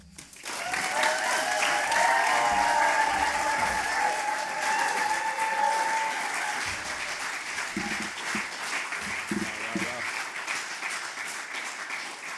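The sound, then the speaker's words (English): Sustained applause from a sizable audience for poets after a poetry reading, dense clapping that swells quickly and stays steady, with a few cheers and faint voices mixed in before it gradually thins toward the end. “can we give all our amazing poets, from Foyle Young to the John Masefield poets, a big, massive round of applause”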